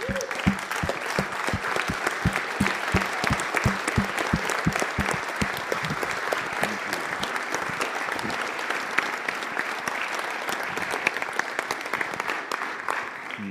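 A steady standing round of applause from an audience thanking a man, dense, even clapping holding at a constant level for about thirteen seconds, with no voices rising above it.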